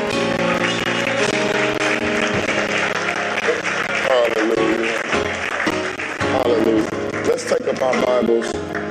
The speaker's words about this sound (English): Now with the clapping of your hands, can we seal that?